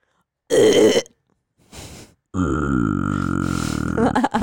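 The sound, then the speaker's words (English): A short, loud burp from a man is followed by a brief breathy intake, then a long, deep, drawn-out burp that rumbles on for about two seconds, prominent with no talking. “Yeah, I mean, he's burping.”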